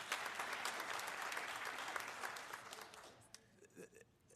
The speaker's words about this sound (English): Are you in mid-sentence, or? I'm speechless. Because of the applause.